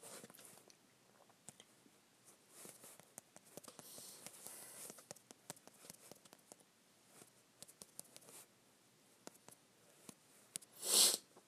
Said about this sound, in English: Ugh. It's fucking cough. It's terrible. Hold on. Yeah, this cough is terrible, ladies and gentlemen.